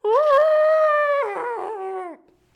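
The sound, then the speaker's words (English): A voice imitates an elephant's trumpeting call, one loud, sustained nasal blare lasting about two seconds, wavering and rougher toward the end before cutting off, with nothing else around it. “How do you make an elephant sound?”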